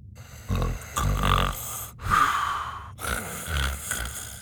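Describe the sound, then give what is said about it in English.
A voice fakes snoring with a handful of rhythmic, breathy snorts and exhales, moderately loud, with short pauses between each drawn-out breath and no words. “… was pretending to snore”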